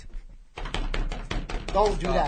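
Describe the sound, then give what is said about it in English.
A rapid drum roll banged out on a tabletop: a steady run of loud, quick knocks after a brief quiet start, with a voice chiming in over the final second. “Drum roll. Don't bang the table.”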